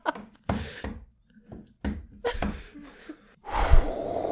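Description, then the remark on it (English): Someone mimics a dragon breathing fire: several short, breathy huffs and gasps, then a loud, sustained hissing roar of breath to finish. “That's him breathing fire on her tits.”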